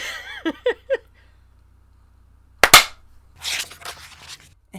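A few quick bursts of laughter give way to one sharp, loud clap, then a brief scattered flurry of hand claps and noisy rustling before it trails off.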